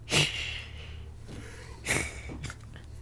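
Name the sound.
imitated snoring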